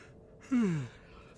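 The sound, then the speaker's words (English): A single short, breathy yawn from one person, its voiced tone sliding downward before trailing off, against a quiet background. “Cut and take it again. Try not to yawn.”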